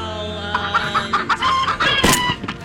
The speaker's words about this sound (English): What was that? It's a chicken.